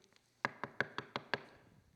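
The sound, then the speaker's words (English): Six quick, evenly spaced knocks on a door, firm, rapping in a steady rhythm and then stopping, with no voices present. “There's a moment it shuts, and there are people on the outside, and they're knocking.”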